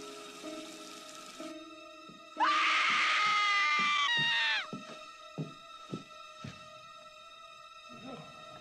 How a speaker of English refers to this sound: We hear screaming of Jamie at the top of the staircase holding the bloody scissors, still dressed up as the clown, with Loomis yelling, no, he's going to shoot her.